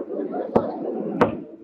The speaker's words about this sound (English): What are you knocking on that lifeboat for, miss? Well, it's good luck to knock on wood.